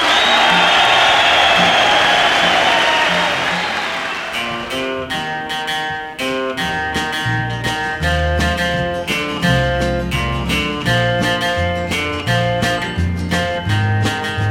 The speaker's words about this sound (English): How about one big cheer for …?